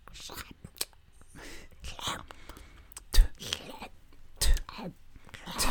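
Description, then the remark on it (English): Breathy whispering and wet throaty rasps from a single voice attempting ASMR over a video of a Squirtle eating watermelon, broken by two sharper phlegmy, cough-like bursts near the middle and end, like Gollum's coughing. “You sound like Gollum having, like, phlegm in his throat.”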